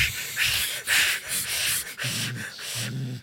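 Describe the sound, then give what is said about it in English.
A person makes forceful, rhythmic straining breaths, sharp hissing exhales in quick succession with low groaning grunts, imitating a pilot's breathing under heavy G-force. “You're breathing like those pilots doing G-forces.”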